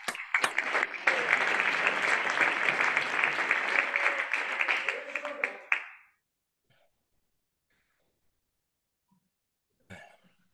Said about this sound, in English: Can you clap your hands?